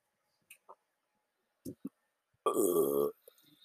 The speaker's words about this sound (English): Excuse me, I was burping.